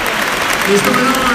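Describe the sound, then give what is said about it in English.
Steady, dense applause from a large football stadium crowd giving a standing ovation to Marcus Rashford as he is substituted, a broad continuous wash of clapping with a faint voice briefly rising above it. “Marcus Rashford is getting a deserved applause from the whole of the ground. A standing ovation.”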